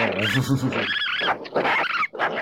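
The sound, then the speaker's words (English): A raccoon's calls, a run of shrill, wavering trills and whinnying chitters with low churring underneath, fairly loud, filling the whole moment with no one talking. “When can raccoons go off?”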